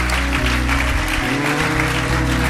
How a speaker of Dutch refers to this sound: Come on, why don't we give these guys a hand right now? Een applaus geven.